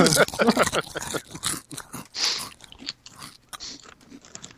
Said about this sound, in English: Somebody's getting their crunch on. Somebody's getting their crunch on. Oh, there it goes. Get your crunch on.